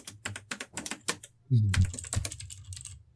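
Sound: computer keyboard typing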